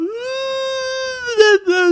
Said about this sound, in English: He's a little singer. Recently, he's been howling when we play other Malamutes howling. He likes to sing. Show them his signature sound. All right, here you go, Codes. Take it away.